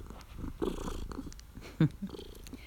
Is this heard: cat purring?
yes